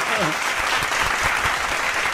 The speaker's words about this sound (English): Can he give that brother one of those applause or something, you know? Perfect. Yeah, there we go.